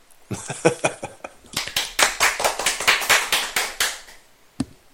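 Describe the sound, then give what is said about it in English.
A short burst of applause-style clapping played as a sound effect: sharp, loud, quickly repeated claps that thicken for about four seconds, with a faint voice at the start, then one last lone clap. “Hit the applause sound effects”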